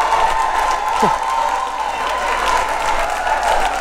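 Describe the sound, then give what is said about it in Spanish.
A crowd roars with sustained shouting and cheering, mixed with applause and scattered whoops, holding steady and loud for the whole stretch, in response to a remark about Puerto Rican women giving glory to God. “Yo espero que ese grito sea porque usted está más orgullosa de ser cristiana.”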